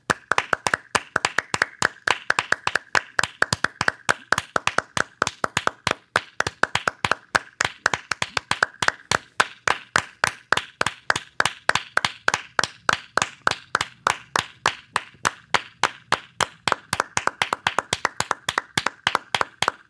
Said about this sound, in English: And if you're sitting there listening, join us right now join as we in. Clap for ….